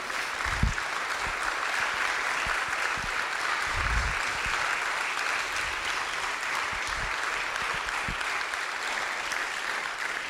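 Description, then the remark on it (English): Steady, dense applause from an audience for the storytellers of a storytelling evening, a continuous wash of clapping that holds at an even level for about ten seconds, with a few low thumps beneath it. “Let's give one more round of applause for all of our storytellers.”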